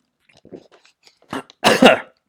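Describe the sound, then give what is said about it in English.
Someone coughs after something goes down the wrong pipe: faint throat sounds and small breaths, then a couple of harsh, loud coughs bursting out near the end. “No, oh, man, I went down the wrong tube.”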